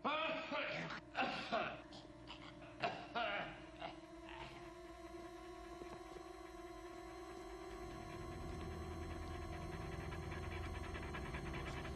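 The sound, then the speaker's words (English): A dog whines in long, wavering tones, with short panting bursts in the first few seconds, over a steady low hum that swells toward the end. “And then all of a sudden we hear the sound of a dog.”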